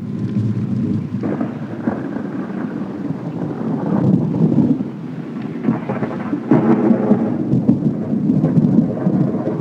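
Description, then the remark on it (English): Deep, rolling thunder rumbles continuously with no speech, swelling in loudness over several seconds, its low booming growl layered with a hiss like wind or rain; the thunder from the death of Yoda scene in the film, sound by Ben Burtt. “The death of Yoda, thunder.”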